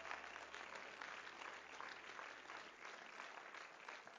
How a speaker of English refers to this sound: Clap your hands once again to the Lord.